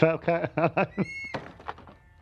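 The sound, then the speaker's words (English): Four evenly spaced knocks on the door of a canal boat, made by a voice imitating them, fairly loud. A short tonal chime follows, then a few fainter taps as the sound fades. “Let's knock on the door.”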